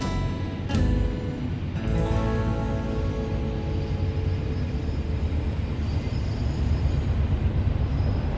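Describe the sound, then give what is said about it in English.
A train rolls steadily along railroad tracks through a neighborhood, a loud, continuous low rumble with metallic clanks and brief sharp squeals near the start, with no talking. “These tracks crisscross through the neighborhood, then span all over the country. But trains still carry people.”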